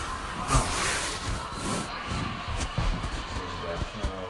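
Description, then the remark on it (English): A motorcycle passing by, its engine a steady, hissing roar with low rumble that holds through the few seconds, with a muffled voice faintly underneath. “That's a motorcycle.”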